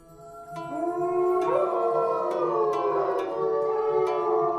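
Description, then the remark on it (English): Several wolves howl together in a sustained chorus, their long sliding tones overlapping and rising and falling for the whole stretch, fairly loud and steady with no talking. “And he had a great open area for a large pack of wolves, and the wolves could roam from one end to the other.”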